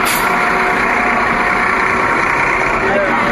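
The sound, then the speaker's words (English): A bus's large diesel engine idles steadily and loudly at a bus stop, a constant low rumble with a faint high whine, and voices murmur underneath. “Do we want to stand up on this bus?”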